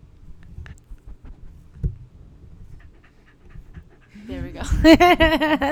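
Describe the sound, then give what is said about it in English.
A dog named Rocco pants, quiet and low at first, then rising into loud, rapid, rhythmic breaths with whiny tonal edges near the end. “He was panting.”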